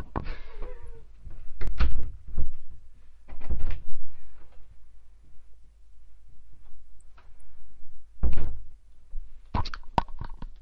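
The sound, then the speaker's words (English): A door is opened and closed as a cat is let out of the room, with a scatter of sharp clicks and clunks spread across several seconds and soft shuffling in between; no one speaks. “And after I just let my cat out of the room before he digs up my carpet.”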